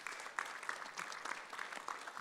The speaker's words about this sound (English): Absolutely grateful for each and every one of them. And yes, we can give them an applause.